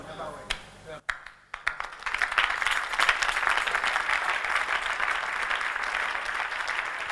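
A few scattered, sharp claps give way to a full burst of crowd applause that swells after a couple of seconds and holds steady, dense and loud, until the end.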